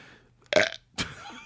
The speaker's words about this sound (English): That's why I don't do the analyst work either. I fucking burp into the microphone like a child.